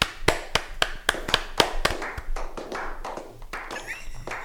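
A quick, steady series of about ten hand claps rings out sharply, celebrating someone who has just correctly spelled the name Nikita Kucherov, then gives way to a softer mix of faint voices and shuffling.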